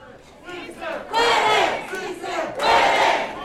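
A crowd at a Culinary Workers Union rally in Las Vegas, Nevada, on the morning of Election Day cheers and shouts together in two loud, swelling bursts, rising from a murmur into rowdy rally-style yelling with no single speaker standing out.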